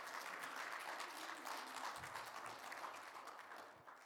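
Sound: audience clapping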